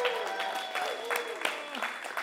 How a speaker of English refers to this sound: Give her a little round of applause.